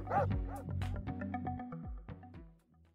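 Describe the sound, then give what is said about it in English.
A dog barks and yips in a quick, loud series of bursts, with a few whimpering notes trailing off toward the end; it is the neighbours' dog, Clifford. “I've brought all 25 of my family members, including my uncle and his two wives, the three neighbours and their dog Clifford.”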